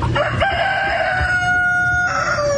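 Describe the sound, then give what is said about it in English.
A rooster lets out a single loud, drawn-out crow in reply to a boy's question, its harsh voice rising then sliding down and trailing off, with no one talking. “Sounds like that rooster has some strong feelings about Chick-fil-A.”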